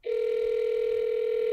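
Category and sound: signal or alarm, telephone ringing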